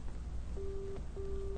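A phone line's busy signal: two steady, low beeps of equal length with a short gap between, repeating over a constant background hiss and rumble.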